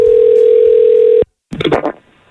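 A steady, loud telephone tone as a call is placed to a man who picks up any call, holding for about a second before cutting off, followed by a brief pause and a short burst of sound on the phone line.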